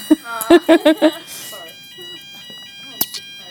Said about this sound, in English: It's 11 o'clock. It's the fire alarm.